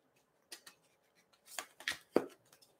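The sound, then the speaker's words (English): A tea leaf card deck is lightly shuffled before a card is pulled, giving a quiet flurry of soft, crisp flicks and snaps that bunch together in short irregular bursts, heard alone with no talking. “I'm going to do a light shuffle here.”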